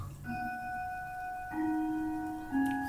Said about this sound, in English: It's my dad's clock. Lovely. My late father, yeah. Yeah, let's listen to that. We're on the half hour there, are we? I think it's on the quarter. Oh, that's actually the quarter?